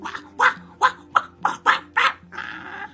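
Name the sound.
puppy barking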